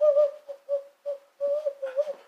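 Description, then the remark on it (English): A person whistles an imitation of an owl call, a series of steady, breathy tonal hoots in short bursts with brief pauses, moderately loud with no talking. “owl.”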